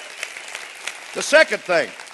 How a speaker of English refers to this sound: Clap your hands for that. Come on, clap your hands.